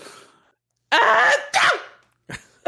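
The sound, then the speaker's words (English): A loud sneeze in two voiced bursts, a drawn-out intake followed by a sharp expulsion, with an odd, exaggerated tone that sounds fake, like a child pretending to sneeze, then a brief faint sniff-like sound. “Wow, it's weird that your sneezes sound really fake, like a child pretending to sneeze.”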